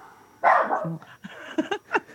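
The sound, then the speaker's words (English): A dog barks a handful of times, starting with one longer, louder bark followed by a quick series of shorter, sharper yaps, with no talking. “The dog's giving you the seal of approval.”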